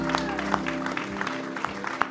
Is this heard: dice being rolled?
no